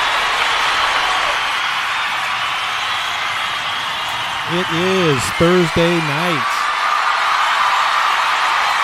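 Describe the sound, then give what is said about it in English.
A crowd cheers and applauds in a steady, sustained roar that fills the whole stretch, while a single voice speaks briefly over it near the middle. “What a crowd.”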